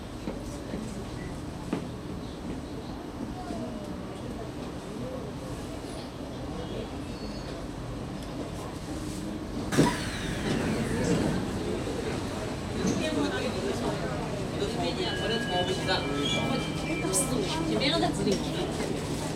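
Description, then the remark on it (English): A subway train, carrying a passenger who will change trains at Ruffles Place, rumbles steadily along the tracks, its noise growing louder and harsher about halfway through, with faint muffled voices in the carriage beneath the din. “I'm changing trains at Ruffles Place, remember?”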